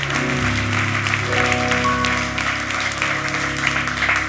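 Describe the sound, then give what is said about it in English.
An audience claps their hands in a steady, dense wash of applause lasting several seconds, layered over sustained low keyboard chords that shift partway through. “Come on, say amen, clap your hands.”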